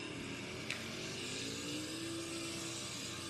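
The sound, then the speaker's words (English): A modded Toyota stock car engine in a video game drones steadily with a rising, sustained tone as it revs, joined by a brief sharp click partway through; the engine noise is fairly quiet and continuous, with no voices. “Okay, I'm gonna test this like Toyota. See what happens.”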